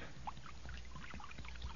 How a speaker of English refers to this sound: Well, I done found a jug of acid here. Now I'm gonna start pouring it now.